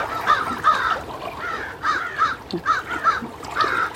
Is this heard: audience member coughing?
no